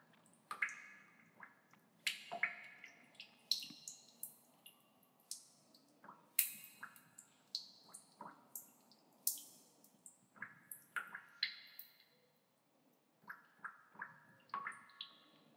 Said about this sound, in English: Second drop of water.